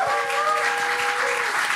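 A crowd claps loudly and steadily for a four-piece band, a dense, continuous patter of many hands, with a sustained whistle or cheer tone riding over it throughout.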